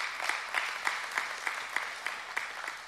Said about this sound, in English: Now, some of you are clapping, which I'm very happy about, but let me really challenge you right now.